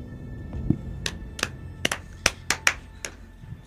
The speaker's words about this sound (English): Slow clap.